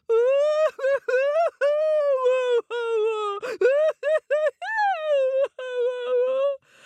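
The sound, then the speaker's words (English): A voice imitates a little star crying after falling from the sky: a run of high, wavering wails and whimpers, broken into short sobbing bursts with brief gaps, loud and continuous for several seconds. “The little star started crying again.”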